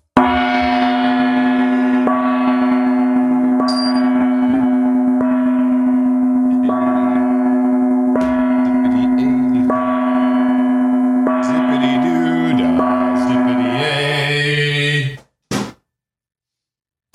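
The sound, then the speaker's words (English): A loud, resonant gong hums continuously, struck again every couple of seconds so its deep metallic tone keeps swelling, before the ringing cuts off abruptly near the end. “Well, I'll entertain the folks with a bong. A gong.”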